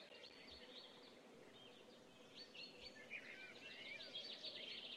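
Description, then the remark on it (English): Birds chirp and trill continuously in a forest, several calls overlapping over a steady soft outdoor hum, with no one speaking. “I'm hearing birds in my head.”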